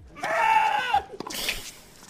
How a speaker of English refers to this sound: I was like, Do you think that's an animal or a human? I think that's an animal. Yeah, it is. It's a goat.